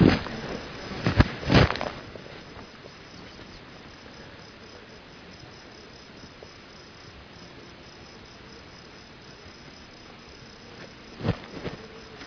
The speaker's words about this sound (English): That's a third bird, isn't it? Sure is. That little half gobble that you hear is a third male turkey that has just started gobbling. And he's probably 200 yards away from these two longbeards.